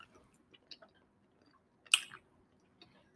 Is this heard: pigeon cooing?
no